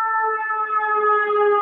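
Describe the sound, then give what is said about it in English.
A loud siren of a passing emergency vehicle holds a steady, piercing tone for over a second, its pitch drifting slightly lower as it goes, with no voices over it. “Oh, I mean, you know, sirens.”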